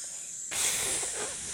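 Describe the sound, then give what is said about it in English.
A person imitates the flame of a Havdalah candle sizzling out with a single breathy hiss: after a brief silence it starts abruptly and holds steady, bright and airy, for about a second. “It was the Havdalah candle. Oh, when yeah. When the fire goes out on it, and it's like...”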